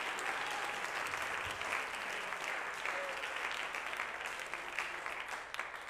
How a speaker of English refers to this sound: Can we clap our hands and give God praise here?